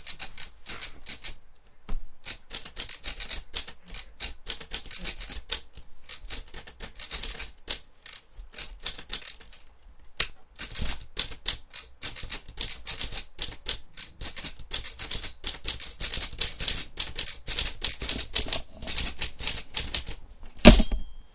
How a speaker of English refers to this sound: Playing on the typewriter. It's a musical instrument. It's not for random discords.